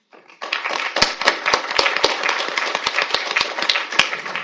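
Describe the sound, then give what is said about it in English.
An event audience applauds after a talk on religious freedom and human rights, starting abruptly and holding at a steady, dense roar of clapping for about four seconds, with a few louder, sharper individual claps popping out above the wash. “I'm going to ask that please hold your applause until the very end of the event so that we can make sure to have enough time for your questions.”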